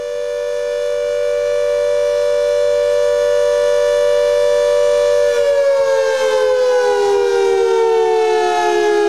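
A loud World War II air raid siren holds a steady wailing tone, then begins to wind down, its pitch sliding lower near the end. No voices are present.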